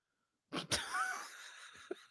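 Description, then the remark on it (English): A single loud sneeze bursts out after a moment of silence, a sharp explosive onset followed by a breathy, hissing tail and a faint sniff at the end. “I finally fucking sneezed.”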